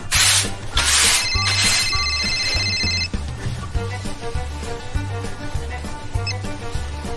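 A telephone rings during an outgoing call to a friend, made while geocaching near an old water tower: bright, trilling rings in the first few seconds, then steady repeating pulses that continue to the end. No one speaks.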